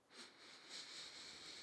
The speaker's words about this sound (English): It's a little tiny sample capsule. I love it. It's really cute. It's really adorable. So I'm gonna go ahead and give it a smell. I give it a little sniff.